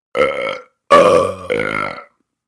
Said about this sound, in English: Oh, I guess you're right. I've got the fruitcake burps, too.